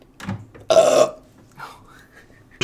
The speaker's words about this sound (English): I have to burp.